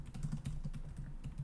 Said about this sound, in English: I'm typing it right now in the document.